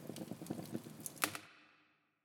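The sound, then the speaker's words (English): Crackling fireplace with dense, irregular pops and snaps over a low rumble, one sharper crack near the end, then the sound drops away abruptly into a fading hiss. “But this is a fireplace sound to introduce our segment, cozy locations.”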